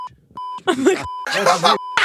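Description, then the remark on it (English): A steady, high censor beep cuts in to bleep out a name, first as a few short blips, then as a sustained tone running beneath and between loud bursts of overlapping talk. “Can we beep it out? Beep it out. I will beep it out, right?”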